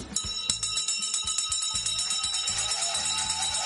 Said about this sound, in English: At the sound of the bell, the industrial action begins.